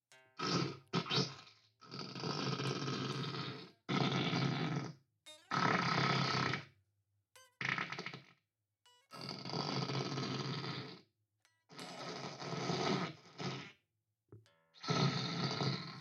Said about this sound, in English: It just farts. But now there are two settings. That was the dry farts. Yeah. Here's the wet farts.